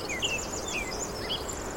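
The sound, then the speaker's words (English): A dense tangle of high chirps, whistles and trills from many birds at once, overlapping continuously at moderate volume, a dawn chorus as the birds wake at the very first pre-dawn light, with no voices present. “The dawn chorus is this amazing phenomenon where all the birds essentially wake up at the very first pre-dawn light. And they start communicating with each other about what they have to do.”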